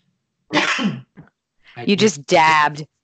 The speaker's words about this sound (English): I just dabbed and I also sneezed, my first sneeze on my podcast, but you know what, this is raw and unedited, so that's what you get.